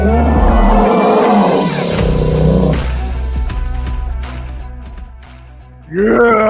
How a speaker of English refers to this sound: Bears roaring, you know, Bears roaring. In California.